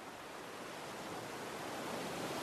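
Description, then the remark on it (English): A steady roar of ocean surf washes continuously against huge, sharp boulders on an island's shore, swelling slightly louder toward the end, with no voices and no distinct individual wave crashes standing out. “Beyond them are rocks, huge, sharp boulders that have been protecting this island of faith from the waves that seek to destroy.”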